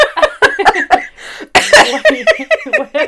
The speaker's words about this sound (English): I made a laugh cough there.